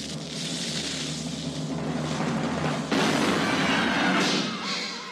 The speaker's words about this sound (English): I believe we fire the cannon. We fire the cannon.